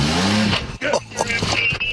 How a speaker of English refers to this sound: Starts the truck, takes off.